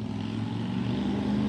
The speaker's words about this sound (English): All right, motorcycle gone. Sorry about that. We outside.